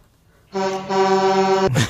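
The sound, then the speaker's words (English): A single long, blaring horn honk lasting just over a second, buzzy and mid-pitched with a slight hitch early on, cut off by a short burst of noise. “Death by Dick follows that honk every time.”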